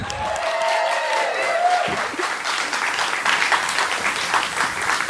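An audience bursts into steady, sustained applause for a performer's cameo in a show, with some cheering and a few whoops rising above the clapping, which stays loud and dense throughout.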